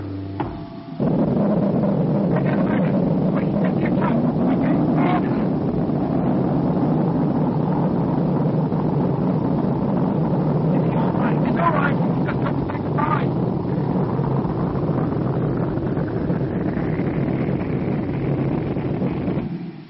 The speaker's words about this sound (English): Motors. We haven't reached escape velocity. We'll drop back to the surface.